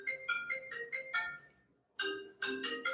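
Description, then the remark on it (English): An iPad ringing with an incoming call: a bright electronic ringtone plays a rapid melodic phrase of chiming tones, pauses briefly, then starts the phrase again, loud with no one speaking. “So oddly enough, that was my iPad ringing when my phone rang.”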